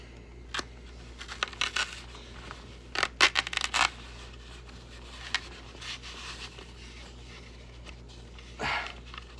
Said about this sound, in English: I'm gonna cut the sock off of it now.